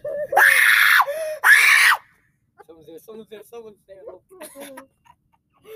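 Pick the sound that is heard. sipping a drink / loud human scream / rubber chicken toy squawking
loud human scream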